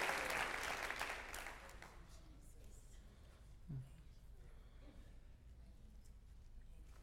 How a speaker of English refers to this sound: Everybody clap for the Lord right now. Thank you. Thank you.